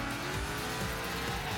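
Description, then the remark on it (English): A racing video game's car engine sound effect: the engine roars loudly and steadily, its pitch sweeping slightly upward as it revs, with a faint tire squeal mixed in. No voices are heard. “reimagined in-game physics to add even more realism to a car's behavior, and different sound effects that reflect the power of your car.”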